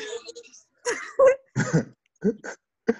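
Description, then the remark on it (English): Someone clears their throat in a string of short, gruff bursts separated by brief pauses, ending with a final quick rasp. “I also cleared my throat.”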